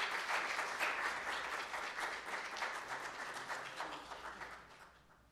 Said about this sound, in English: Without further ado, let's give him a real warm round of applause.